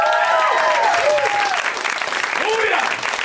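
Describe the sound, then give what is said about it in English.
A crowd applauds the comics steadily and loudly for about three seconds, with scattered cheers and whoops rising and falling over the clapping. “Let's hear it for those comics.”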